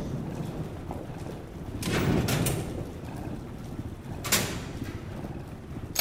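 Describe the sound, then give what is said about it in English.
A door is pushed shut with a dull, heavy thud, followed a couple of seconds later by a sharp metallic clack of a bolt sliding home, against a low background rumble. “Have you bolted the door?”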